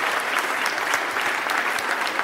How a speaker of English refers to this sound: While you're applauding, applaud yourselves. You've been amazing. Give yourselves a round of applause. Go on.